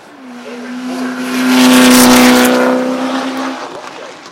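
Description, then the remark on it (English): An Italian-designed car with a 5.8-liter American engine revs loudly at Goodwood, holding a steady deep drone that swells to a peak midway before easing off slightly, with no voices over it. “no, I don't want an I don't want an American engine in an Italian design car.”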